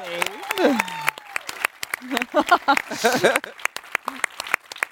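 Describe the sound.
Scattered applause from a small group at a PlayStation and Naughty Dog event, sharp claps crackling steadily for several seconds for the host's job, while people talk and exclaim over it.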